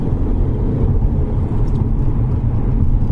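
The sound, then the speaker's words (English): A Mercedes-Benz car engine, which makes lots of torque low down, runs steadily in wet weather with a deep, loud low-end rumble, holding a fairly constant drone for a few seconds with no one speaking. “Well, only in so much as it produces loads of torque low down, so it just wants to go. Let's see. Sounds all right, doesn't it?”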